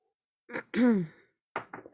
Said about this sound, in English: let me take a quick swig of water.